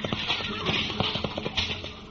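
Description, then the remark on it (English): Rocinante, Don Quixote's horse, gallops at utmost speed toward a windmill, with rapid, rhythmic hoofbeats clip-clopping steadily over a hissing, windy background, continuing for the whole moment. “Don Quixote rushed with Rocinante's utmost speed upon the first windmill he could come at”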